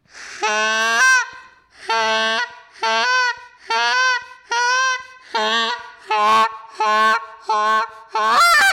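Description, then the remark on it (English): A goose call is blown in a steady series of about nine loud honking clucks, each one starting rough and breaking into a clearer, higher note, with short pauses between them. The player moves the tongue tip from behind the bottom teeth to behind the upper teeth and pushes the air to the front of the mouth, controlled by the diaphragm. “And it sounds just like it goes rough, clear cluck, just with the movement of that tongue and moving the air to the front of your mouth, still controlling it with your diaphragm.”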